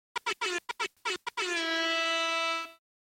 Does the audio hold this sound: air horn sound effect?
yes